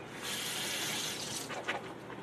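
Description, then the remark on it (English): A faucet runs steadily with warm water as groceries in plastic containers are rinsed in a sink without soap, water splashing and spattering over them, with a few brighter splashes near the end; moderately loud, no voices. “I'm not soaping everything down, but I'm just running it through a little water, making sure that as far as we can tell, if it's got a plastic container”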